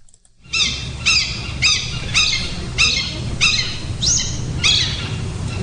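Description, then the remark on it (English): A hawk in the morning gives a steady series of about nine shrill, high-pitched cries, each sliding downward, repeating roughly twice a second over a low background rumble. “Some kind of bird. Yeah, well, that was a hawk. A hawk in the morning.”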